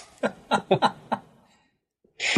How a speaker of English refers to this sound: My cat just almost sneezed himself to death.